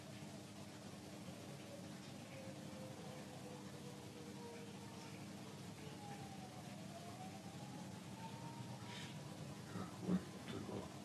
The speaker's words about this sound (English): Whenever I hear sirens, I always think, wait, where are they? What's going on?